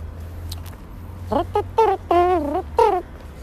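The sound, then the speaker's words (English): A man's voice imitates an elephant trumpeting with four short, wavering, nasal blasts in quick succession, fairly loud over a steady low hum. “Have you heard my ear trumpet?”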